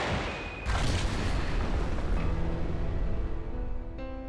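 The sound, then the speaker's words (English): A loud controlled blast demolishing a cave erupts and rolls into a heavy, sustained rumble, followed by a second, smaller controlled explosion moments later as debris keeps roaring. No one speaks. “The cave was demolished with 2 controlled explosions.”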